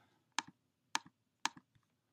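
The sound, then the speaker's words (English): Three crisp presses on a keypad at an even pace, entering a 6-digit PIN while calling into a phone line, each followed by a softer release click, then a faint final tick. No one speaks. “6-digit PIN number.”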